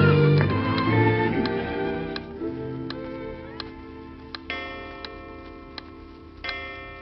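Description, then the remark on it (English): A clock ticks steadily, each crisp tick evenly spaced about once a second, heard clearly over a soft, sustained musical drone with no one speaking. “Do you know what that clock is saying?”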